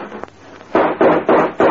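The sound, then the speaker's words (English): Gunshots fired at a mailman at the door: four loud, sharp bangs in quick succession about a third of a second apart, each with a short ringing tail, preceded by a fainter pop. “Slim, that's the third mailman you shot this week.”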